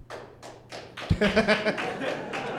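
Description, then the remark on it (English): Applause from a small audience: a few sparse, spaced claps, then a sudden denser burst of clapping mixed with cheering voices that carries on steadily to the end, as audience members applaud the guess they think is closest. “Applaud for the person that you think, as an audience member, is the closest.”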